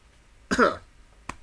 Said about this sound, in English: Apparently I keep on coughing.